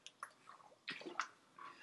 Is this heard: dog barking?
no